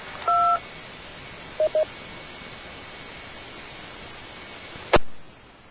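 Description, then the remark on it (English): Touch-tone keypad beeps over a hissing radio channel: one longer dual-tone beep, then two quick short ones, and later a sharp burst of static before the hiss fades. “and was there a third station who is sitting on a DTMF keyboard, or maybe has the wireless mode turned on, or was that it?”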